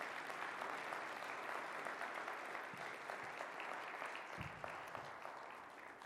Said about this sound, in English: Can you come on up? Everybody give her a big round of applause.